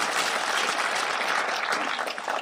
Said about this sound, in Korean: 네, 큰 박수로 환영합니다.